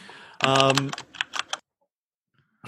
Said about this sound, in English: I think maybe an Apple, like a little dinky dink keyboard, like the new.